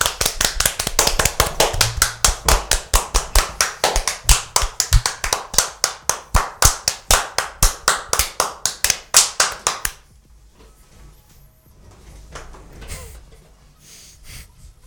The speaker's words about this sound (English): Hope you extend that so it's extra long. Just clapping. Close up on the hands. Close up on your hands.